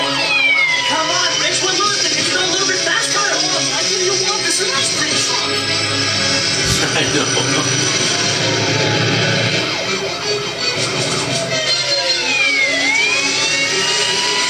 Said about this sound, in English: Car chase.